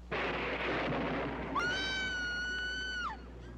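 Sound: scream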